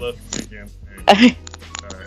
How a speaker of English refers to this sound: Bless you again.